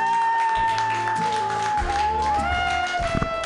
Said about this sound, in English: Your next comedian, I believe it's his first time ever doing comedy. So if you guys don't clap, I'm going to stab you.